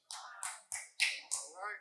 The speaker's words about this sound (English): One clap.